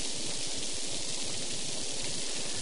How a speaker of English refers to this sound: You just gonna stand on a rooftop in the driving rain for a while?